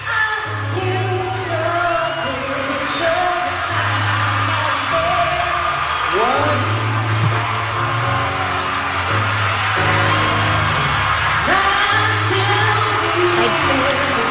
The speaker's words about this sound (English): Sounds like a crowd is in the background. It was a live performance.